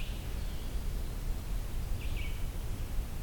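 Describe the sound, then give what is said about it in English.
A hairy woodpecker calls faintly, with a thin squeaky note near the start and a short, sharp burst about two seconds later over a steady low rumble of background noise. “A hairy woodpecker.”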